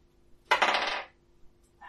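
Dice clatter across a tabletop in one quick, bright rattle lasting about half a second, then fall quiet, with a faint click near the end and no voices.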